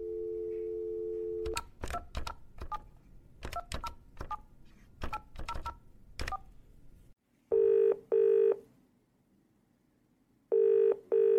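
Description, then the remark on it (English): A steady dial tone gives way to a quick run of about ten touch-tone keypad beeps, then a short silence before loud ringback tones sound in bursts, with no voices, as a phone call is placed to make a reservation. “Yes, so let's see how this next phone call of me trying to do my best to imitate his voice goes.”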